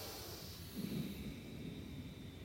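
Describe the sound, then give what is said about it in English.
A soft, throaty ujjayi exhale, breathed out as if misting a mirror, rushes out steadily for a couple of seconds, a hushed breathy hiss with a slightly fuller swell near the start and no talking. “I would like you to breathe out as if you are misting a mirror.”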